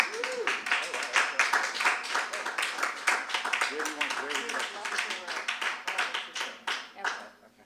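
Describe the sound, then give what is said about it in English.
An audience gives a warm round of applause to welcome guests after their introduction, steady for several seconds, dense overlapping claps with a few voices rising through it, then the clapping thins out and fades near the end. “Let's please give them a warm round of applause.”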